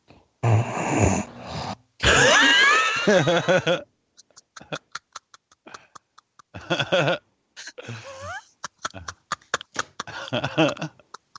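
Loud, close snoring: two long, raspy, rattling snores, then quieter intermittent snorts and breathy clicks, with no clear talking.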